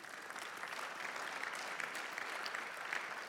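A church audience applauds during a sermon, slow to get going, then a dense, steady wash of many hands clapping at an even volume, with no voices heard.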